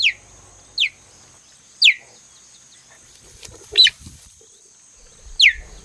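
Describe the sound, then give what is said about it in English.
A cheetah gives a series of short, high, bird-like chirps, five sharp calls spaced irregularly about a second apart, clear over a faint steady background hum, with a microphone aimed at the cheetah. “What's all the chirping about? Hey, excuse me, Mr. Cheetah? What's with the chirping?”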